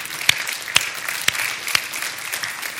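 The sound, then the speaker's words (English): An audience claps for the young adult summer interns at VCNW, a dense crackling wash of many hands with a few sharper, louder claps standing out every half second or so. No one speaks over it. “Clap for them.”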